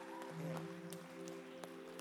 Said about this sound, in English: You guys give her a round of applause.